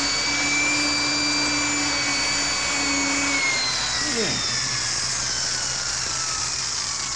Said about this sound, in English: How much farther? About a foot. I'll just pray this drill doesn't break. Oh, it snapped.